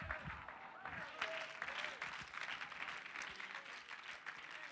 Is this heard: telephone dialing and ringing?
no